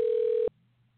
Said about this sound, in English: Why is the line ringing? Who's about to answer the phone? What's about to happen here?